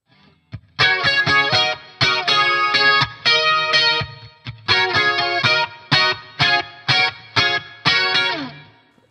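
A live band plays a cover of an upbeat 80s pop song, with punchy, processed chordal bursts in a choppy rhythm over a steady driving beat and deep bass, loud throughout with no singing.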